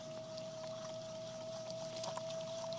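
Water splashes and trickles onto spinning clay on a potter's wheel as a potter adds water before centering the clay. Soft wet spatters sound over a steady mechanical hum from the turning wheel, fairly quiet, with no voices.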